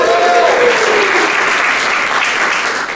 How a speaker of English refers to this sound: Yay! Polite clapping is helpful.